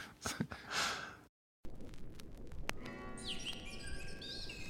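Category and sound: bird, birdsong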